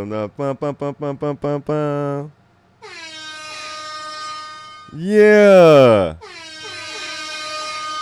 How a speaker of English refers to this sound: Let me give them an air horn for that.